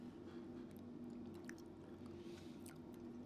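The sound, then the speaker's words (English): Wet chewing sounds of someone eating pizza, with soft squishy bites and mouth noises over a steady low hum, continuous for a few seconds with no talking. “He's chewing on the pizza.”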